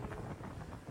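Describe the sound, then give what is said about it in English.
Loud, steady wind buffeting the microphone, a low rumbling roar with gusty flutter filling the whole brief moment, with no voices. “Sorry about the wind.”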